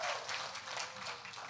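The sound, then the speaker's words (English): A small group claps steadily for a birthday, a dense crackle of hands that keeps an even level throughout without building or fading. No one speaks over it. “Yes, let's clap for”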